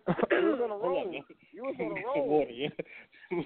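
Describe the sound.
A person clears their throat with a few rough, voiced rasps and gives a short cough or two, with brief pauses between efforts.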